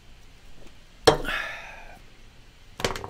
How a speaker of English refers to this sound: Before I forget, turns out, excuse me, that was a Rockstar burp for you.